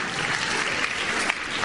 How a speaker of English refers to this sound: I think I've tried. Clap for me. I've tried.